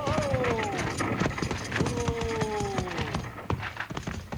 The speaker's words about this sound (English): We gotta stop those horses. We better do it before they reach the bend, Bill, or they'll go over.